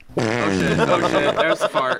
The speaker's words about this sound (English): Oh shit. There's the fart.